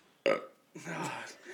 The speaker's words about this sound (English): I'm going to have to burp again.